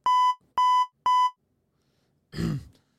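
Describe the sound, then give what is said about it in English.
Three short, loud censor bleeps in an even rhythm, each a steady high-pitched tone, followed by a brief rough throaty burst like a cough after a pause. “I release it, and then you go, fucking, we're supposed to bleep.”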